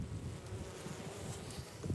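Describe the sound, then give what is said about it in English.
A dense, continuous drone of many honeybees buzzing in a hive opened for inspection with its top taken off, steady and unbroken throughout, with a faint airy hiss beneath and no voices. “If you look right here, you can kind of see some bees up there looking at it.”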